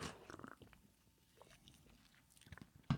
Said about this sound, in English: Give me one second. I got a sip here. I'm getting dry quick.